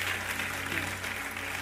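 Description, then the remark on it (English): An audience claps steadily to the Lord, a dense wash of many hands with a faint low hum underneath and no distinct speech. “Clap your hands to the Lord because he's good.”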